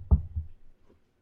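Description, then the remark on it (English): Two dull knocks on wood, the first sharper and louder, the second softer, with nothing else around them. “Knock on wood.”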